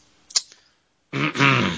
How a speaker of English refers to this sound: Oh God, he's clearing his throat.